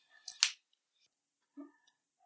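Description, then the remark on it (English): A mechanical pencil clicks: one sharp, crisp click stands out, followed by a couple of softer taps, with no talking. “Pencil sucking up. Sure. Let me know when you're done clicking it and stuff.”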